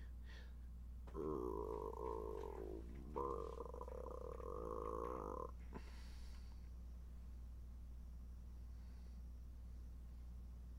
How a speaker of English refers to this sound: I don't know what that was. It sounded like a rumbling, gurgling, death, rattle, croaking noise.